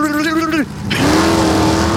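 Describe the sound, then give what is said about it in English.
A voice imitates a drag race car launching: a loud, buzzing engine drone that drops off briefly, then roars back in a sustained, rising rev, alone for about two seconds. “A drag race car doesn't sound like zoom.”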